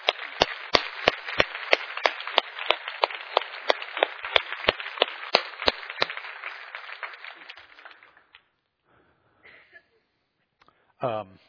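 A church audience applauds steadily for about six seconds to thank standing guests, sharp individual claps cracking out above the dense patter, before the clapping thins and fades away, followed by a brief muffled sound at the end.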